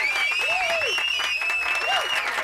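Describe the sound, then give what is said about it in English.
A loud, dense burst of crowd applause and cheering played as a sound effect, with whoops and shouted voices rising over steady clapping that fills the whole stretch without pause. “Okay, pipe down. Fired up for this. Down, crowd.”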